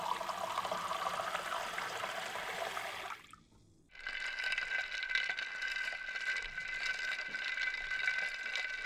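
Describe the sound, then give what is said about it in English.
Blondie makes another pitcher of iced lemonade in a spotless white kitchen on a hot day on Shady Lane Avenue: a steady rush of pouring and sloshing liquid with rattling ice, broken by a brief pause before a second stretch of stirring and clinking. “That's Blondie making another pitcher of iced lemonade.”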